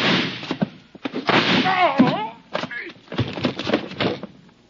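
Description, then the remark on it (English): A door slams hard, then a series of sharp, loud gunshots cracks out, mixed with agitated voices crying out over the commotion. “The door slammed.”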